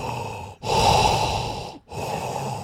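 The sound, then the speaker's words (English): A voice imitates heavy, masked breathing: loud, raspy breaths drawn and released, with two brief pauses between them and no speech. “Give us some breathing.”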